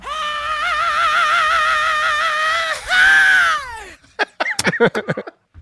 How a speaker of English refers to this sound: And by the way, if you like the growl, you might love the scream at 2 minutes and 30 seconds. Here it is.